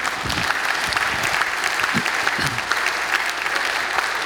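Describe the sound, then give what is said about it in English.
A church audience claps steadily for a guest preacher, a dense, continuous patter of applause that holds at an even level from start to finish, with a few louder individual claps poking through. “And then, yeah, you can clap for him.”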